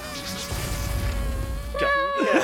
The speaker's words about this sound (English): The balloon emptying sound effect.